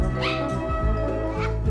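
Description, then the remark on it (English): A person imitates the bark of Lassie, the TV dog, with two high, whiny yelps, the second after a brief pause; the strained calls sound almost like a meow, and there is no ordinary talk. “Lassie didn't bark like that.”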